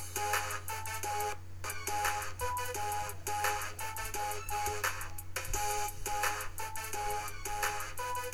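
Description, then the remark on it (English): Intro music for the show Cards, Cats, Countdown plays steadily at an even, fairly loud level, with repeating bright melodic notes over a sustained low drone and a regular beat. No one talks. “I'm pretty sure I'm keeping that music for every show.”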